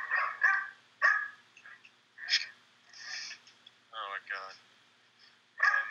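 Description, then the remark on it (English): Dogs bark in a series of sharp bursts with short gaps between them, mixed with a few higher, drawn-out whining yelps toward the end. “can those dogs like go in their room?”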